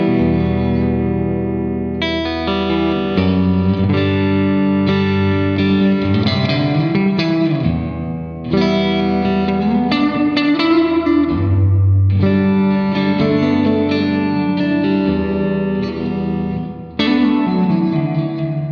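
An electric guitar plays through a Fender reverb pedal set to the 63 setting with every knob at zero (7 o'clock): a continuous run of loud strummed chords and single notes with a slight effects sheen, with short dips between phrases and no talking.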